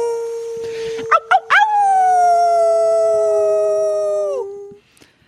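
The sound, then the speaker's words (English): A few quick rising yips lead into one long, steady wolf howl, held loud for about three seconds before it dips and fades out. “You will become She-Wolf. I'm ready to take to the snow. Yeah, I'm really feeling like wolf energy for 2021.”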